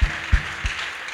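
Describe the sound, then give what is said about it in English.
An audience claps together in praise of Jesus, a dense wash of hands with a few stronger, evenly spaced beats standing out. Moderately loud, with no one speaking over it. “Let's give him a clap of praise.”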